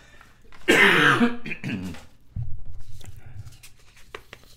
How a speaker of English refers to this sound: Excuse me while I cough.